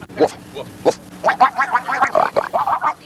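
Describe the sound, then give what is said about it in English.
A man's voice imitates a pig, starting with a few separate snorts and then breaking into a rapid run of nasal, grunting oinks, loud. “He's making pig noises.”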